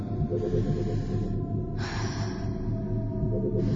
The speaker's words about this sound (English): You should begin your breathing exercises now.